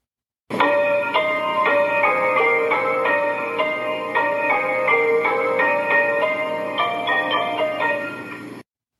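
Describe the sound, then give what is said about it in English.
Bright, high piano notes ring out one after another in a steady, unhurried sequence, each tone sustaining and overlapping like chimes, played alone without any voices. “He went over to the piano and played this.”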